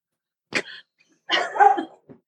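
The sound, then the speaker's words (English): A dog lets out a quick, sharp bark, then after a short pause a longer, rougher grumbling bark, with a faint huff at the end and no talking. “My dog disagrees.”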